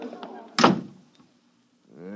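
An office door shuts with one solid thunk that fades quickly after people are ordered out, with brief bits of voices just before it and a man starting to speak after a short silence.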